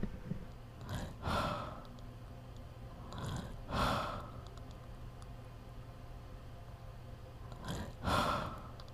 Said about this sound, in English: I'm just sitting down next to you with my microphone. I'm just going to record your breathing.